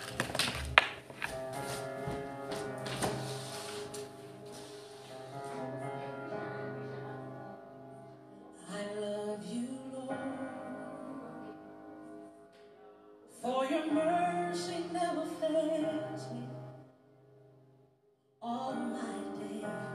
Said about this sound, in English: Just playing with the hammer there and disturbing me. I could hear it here. Sorry.